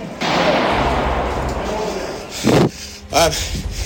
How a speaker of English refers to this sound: There's a bunch of gunshots.